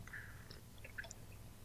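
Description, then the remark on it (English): A quick sip of a drink during a radio broadcast: a few faint, brief wet slurping and swallowing sounds over a low steady hum, with no talking. “I'm going to have to take a quick sip.”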